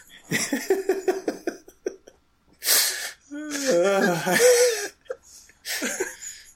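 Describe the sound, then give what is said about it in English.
A sharp, hissing sneeze bursts out after a run of rhythmic chuckling, followed by voiced, laughing vocal sounds and another breathy burst at the end. “God bless you,”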